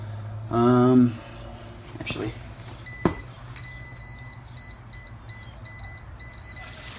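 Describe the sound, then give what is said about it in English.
A voltage tester emits a rapid series of thin, high-pitched electronic beeps in a steady repeating rhythm, fairly quiet, following a brief voice and a soft click near the start. “if you have somebody standing at a panel and you're trying to identify a wire, they can turn breakers on and off and this thing will just start beep beep beep beep beep beep beep beeping at you.”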